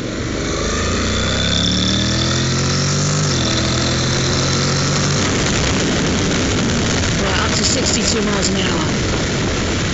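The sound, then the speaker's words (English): A motorbike with no hand clutch or foot gears, opened up to go faster after turning right, accelerates steadily, its whine climbing in pitch, dropping briefly and climbing again, before giving way to a loud, rough, rushing roar of road and wind noise. “I'm going to turn right now and have an opportunity to open the bike up a little bit and go a little bit faster.”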